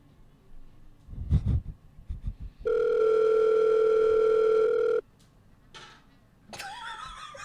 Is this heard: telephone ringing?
yes